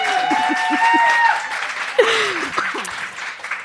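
A live audience breaks into steady applause, a dense wash of clapping with a few cheers and whoops rising over it, then fading as a voice starts talking.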